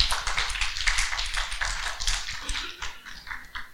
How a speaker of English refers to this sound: Can you guys just give them a clap while they come up? Because they've done a phenomenal job.